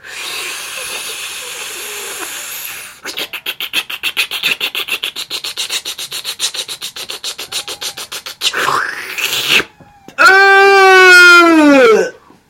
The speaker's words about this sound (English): You give that to your Aunt Jemima, she takes a nice long drag of that. It sounds a little bit like this.